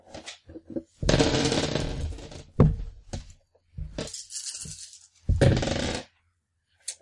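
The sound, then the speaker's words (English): Eight dice clatter and rattle across a hard tabletop in several fairly loud bursts, rolled for an attempt to stun with a taser in a game: a long tumbling roll followed by shorter skittering clacks, with no one talking. “8 dice.”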